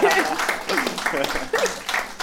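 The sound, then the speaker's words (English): An audience applauds loudly and steadily, a dense wash of clapping mixed with cheering and excited voices throughout. “You thought we clapped.”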